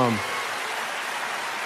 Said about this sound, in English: Keep clapping if you love your dog.